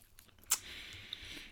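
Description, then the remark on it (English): A single crisp bite snaps, followed by soft, steady crunchy chewing of a chocolate crinkle cookie with a faint click partway through; no one speaks. “All right, I have to try one of these.”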